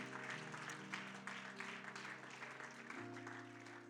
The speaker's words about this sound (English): Come on, somebody shout hallelujah. Come on, give him a good hand clap of praise right now.